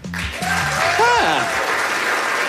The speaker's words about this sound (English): A few of you guys clapping, some of you not.